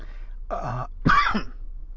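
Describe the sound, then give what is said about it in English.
A fairly loud cough and a burp come in quick succession, two short throaty bursts about half a second apart with quiet on either side and no talking. “I had to cough and then I had to burp.”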